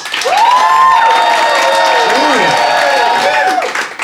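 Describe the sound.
A Phoenix audience claps and cheers steadily for about four seconds to give its verdict, with loud sustained applause and voices whooping and shouting over it, the cheers rising and falling in pitch.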